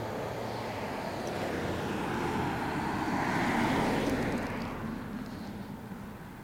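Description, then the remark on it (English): A car drives past outdoors in a neighborhood, its broad rushing engine and tire noise swelling steadily to a peak midway, then fading as it moves off. No one speaks. “Here's a car by.”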